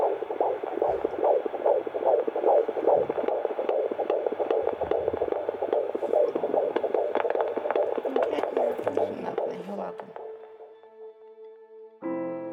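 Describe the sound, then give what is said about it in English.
A baby's fetal heartbeat on a Doppler monitor, heard for the first time: fast, steady whooshing pulses over a muffled, staticky hiss for about ten seconds, then fading out, with no voices. “Hearing the baby's heartbeat for the first time is just such an incredible milestone.”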